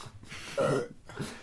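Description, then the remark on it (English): A single short, loud burp rings out, followed a moment later by a softer, throaty sound. No one speaks. “Burps.”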